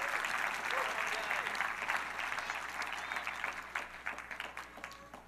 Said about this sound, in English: So at this time, I would like to introduce 4 youth that we called up to give a little quick testimony about what happened and their experience at camp. So if we can give them a round of applause, welcome them up here.